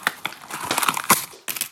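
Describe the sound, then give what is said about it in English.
Christmas crackers being pulled apart on a count of three, a burst of crinkling, tearing paper with a few sharp snaps, then a brief pause and one more short rustle. “We are going to start with our Christmas crackers, our holiday crackers, which we do when we're together every year.”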